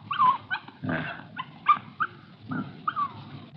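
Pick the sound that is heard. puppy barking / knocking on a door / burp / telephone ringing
puppy barking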